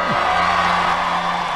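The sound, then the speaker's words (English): A large crowd cheers and roars steadily at Donald Trump's final midterm-season rally in Ohio on a Monday night, held for Senate candidate J.D. Vance, a dense wash of voices holding at a loud, even level with a brief whoop at the start. “That was Donald Trump before a crowd in Ohio on Monday night where he was holding his final rally of the midterm season to bolster, theoretically, Republican Senate candidate J.D.”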